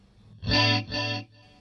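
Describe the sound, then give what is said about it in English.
A distorted electric guitar chord played through a digital delay rings out and is followed by a slightly quieter delayed repeat, then a faint tail fades away. It is moderately loud, with no talking. “I want very few repeats. What about your time? How's it? Let's do a little bit longer.”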